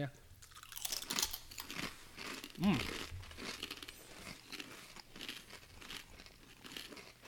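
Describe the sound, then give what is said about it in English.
Loud crunching and crinkling as people bite into and chew waffle-like potato chips with holes in them, with bursts of brittle snaps repeating irregularly throughout, mixed with faint voices in the background. “If someone has that thing where they don't like to listen to people chew, they're going to fucking hate this episode.”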